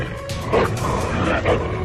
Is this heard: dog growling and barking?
yes